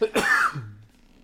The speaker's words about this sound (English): Bless ya. Thank you. Or was that a cough? It was a cough, but, you know. Bless your cough. Coughs are a wicked thing.